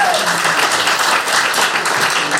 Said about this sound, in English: Well done. Give them the applause. Give them the applause.